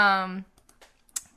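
A brief vocal sound at the start, then a few soft, scattered computer clicks, irregular, with one sharper click near the end.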